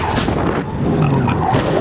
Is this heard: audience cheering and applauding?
no